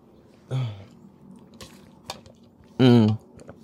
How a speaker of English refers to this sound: Okay, sorry. I just like seized up and needed some water there.